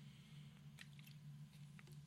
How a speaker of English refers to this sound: Like you probably know, I just took a sip of one of my favorite beverages.